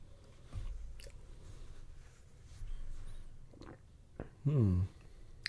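Quiet mouth noises of someone sipping beer while tasting it: soft slurps and small wet clicks over low background hiss, ending with a brief voiced hum.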